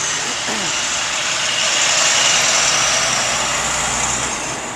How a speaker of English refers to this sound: Hold on, let's just look at the dump truck for a second.